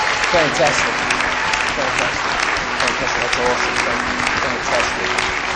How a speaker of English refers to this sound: and we're going to clap and we're going to cheer. Come on, church.